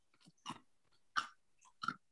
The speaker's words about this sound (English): Am I chewing on ice?